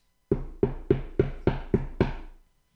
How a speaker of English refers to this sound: best believe that's when Mr. Hard Time comes for a house call, knocking at your door.